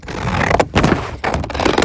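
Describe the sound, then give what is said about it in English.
Paper being cut, heard as crisp, hissing swishes in a few long strokes separated by short pauses. The sound is fairly loud and steady, with no talking. “All right, if you want to hear this, it's me cutting paper.”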